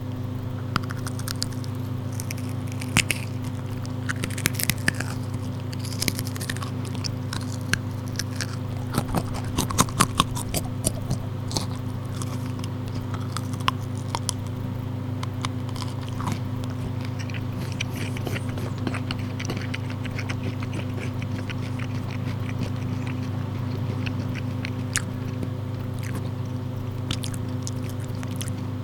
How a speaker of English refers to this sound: There we go. The thing is, the last 3 seconds of that is just your normal chewing noise.